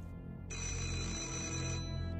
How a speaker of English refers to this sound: That moment, my phone rang.